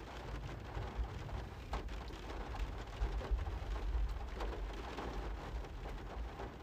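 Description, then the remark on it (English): Heavy rain pours down steadily, a dense hiss of drops spattering on surfaces, with low rumbling thunder rolling underneath. No voices are heard. “That's rain. That's adverse weather.”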